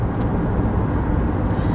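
Steady low road rumble fills the cabin of a moving car, a constant droning hum with no voices, just the continuous engine and tire noise, with a couple of faint high squeaks.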